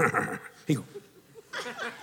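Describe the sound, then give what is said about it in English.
A person imitates a horse's whinny with their voice to a horse: a few short, wavering, breathy bursts, one rising to a louder neigh-like cry before trailing off. “So I walked with this horse. This horse just kind of looked my way.”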